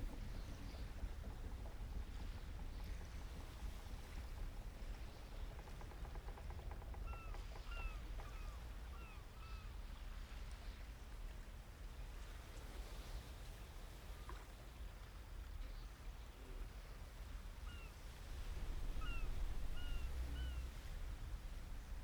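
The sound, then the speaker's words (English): Water washes steadily against a sailboat's hull beneath constant wind rumble, with a few brief high squeaks now and then and a slight swell in loudness near the end. “The rhythmic sound of the water lapping against the hull creates a soothing melody that blends with your heartbeat.”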